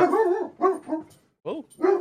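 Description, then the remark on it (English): A dog named Lola barks and yelps in about five short, tonal bursts with a whiny edge, coming in an uneven rhythm with a brief pause partway through. No voices are heard. “Lola's very unhappy about something.”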